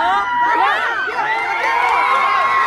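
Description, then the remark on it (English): A large crowd with rainbow flags in Sonora erupts in sustained cheering as a marriage equality measure clears a legislative vote. Many overlapping high-pitched shouts and whoops rise and fall, loud and continuous throughout. “And when it finally cleared the necessary threshold, the crowd erupted.”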